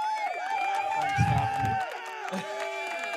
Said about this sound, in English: Fuck, the crowd's going off. Fuck, they're going crazy.